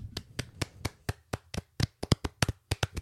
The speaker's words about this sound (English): Applause for you.